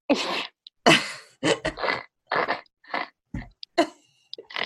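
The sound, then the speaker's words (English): A person imitates a pig with a string of rough, nasal snorts, short breathy bursts in an irregular rhythm separated by brief pauses, fairly loud and with no talking. “Oh, I did it. Like a pig.”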